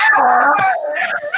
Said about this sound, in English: Her eyes pop and she screams.